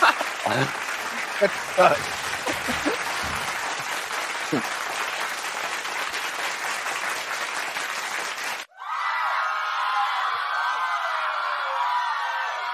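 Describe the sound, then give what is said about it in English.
A stand-up comedy show crowd claps steadily and loudly after a joke, with scattered whoops and cheers rising over the applause, then the sound abruptly cuts to a brighter, sustained wash of cheering and clapping. “Why are you clapping for that?”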